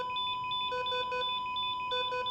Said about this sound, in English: She looked at the door, but couldn't hear anything over the blaring alarm.